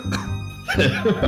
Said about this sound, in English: … coughs a little bit.